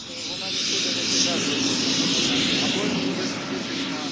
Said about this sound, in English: After a 3-hour delay to let the fog lift, visibility is essential, the pilots climb into their cockpits. The copters are painted with blue and yellow bug eyes and look like giant insects taking to the air.